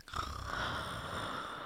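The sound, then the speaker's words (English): A single drawn-out, breathy yawn, fairly quiet, with an airy exhale that holds steady for over a second. There is no talking. “I literally just yawned.”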